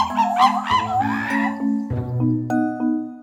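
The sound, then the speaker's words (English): Monkeys call in a busy chorus of overlapping whoops and hoots that slide up and down in pitch, layered over a lower steady droning tone, with no talking. “Here's what monkeys sound like in real life.”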